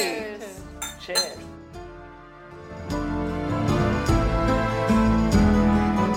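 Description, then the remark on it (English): Glasses of Prosecco clink together in a toast at the end of a Not Just the Tudors Lates discussion, a few bright ringing chinks, followed by a busier stretch of clattering and light tapping with faint murmured voices behind. “Well, thank you for the invitation and the Prosecco. Absolutely. Cheers.”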